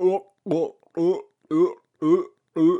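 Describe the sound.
A person's voice imitates sea lions barking: six gruff, low, throaty barks in a steady rhythm, each about half a second apart with short silences between.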